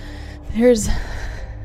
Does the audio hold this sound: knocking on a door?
no